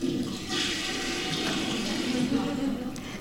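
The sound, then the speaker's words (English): A toilet flushes in the women's bathroom behind an office, a steady whooshing rush of water that holds at an even level for a few seconds, with no one speaking. “The women's bathroom is located behind our office.”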